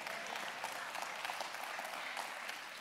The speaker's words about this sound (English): We got about 20 claps with that.